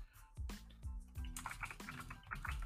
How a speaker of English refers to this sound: Oh, loud ass keyboard. Well, hey, his keyboard.